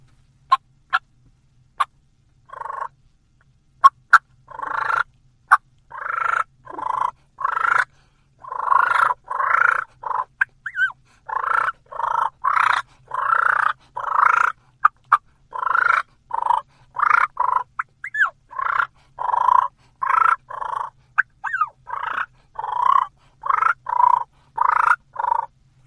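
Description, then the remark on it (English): Aggressive, deep turkey purrs, a fighting purr imitating two gobblers, roll out loud in a steady series of bursts, broken by sharp clucks and thin, high whines. No one speaks. “All I'm doing is getting more aggressive with that same purr, a deeper tone, adding some clucks, and putting that little whine in between some of the purrs.”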